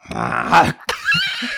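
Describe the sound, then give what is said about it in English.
A person imitates a tiger's cough: a sustained, loud growling rumble, a brief pause, then a sharp burst that trails into a raspy, breathy rasp. “That's a tiger cough. Starts like a growl and then gets a little raspy.”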